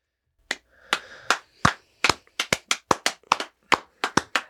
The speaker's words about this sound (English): Clap all day. Keep going. Till 9:30, obviously, before they start cleaning up. Keep it going.